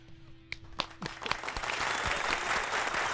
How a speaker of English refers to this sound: Hey, JG, full applause for JG.